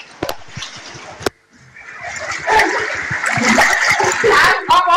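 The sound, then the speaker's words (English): Water splashes and sloshes inside a flooded house where books are stuck in the water, starting with a couple of sharp splats, then building into a steady, churning wash of moving water with faint voices mixed in. “You can see the house so flooded, and we don't know how to go.”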